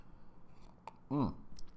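A quiet sip of coffee from a cup, with a small wet click of the lips, followed by a short, audible gulp and a satisfied voiced exhale.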